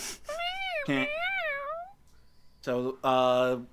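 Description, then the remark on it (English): A domestic cat meows, several drawn-out, wavering calls in quick succession, with a short pause before two louder, more insistent meows. “Happiness because my cat IRL is meowing.”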